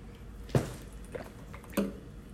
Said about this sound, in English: But actually, let me drink a little water right now. Excuse me.